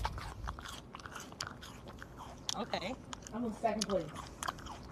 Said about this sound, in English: You just wanted to hear you chewing with your ignorant ass?